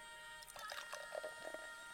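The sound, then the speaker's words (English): Pepsi Max, a fizzy soft drink, pours into a glass in a short, quiet trickle with faint bubbling, heard alone for roughly a second before fading out. “So we're going to start out, open up a little Pepsi. I'm going for Pepsi Max because I'm on a diet, all right? And we're going to try pouring it in.”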